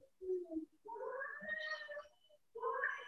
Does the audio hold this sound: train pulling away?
no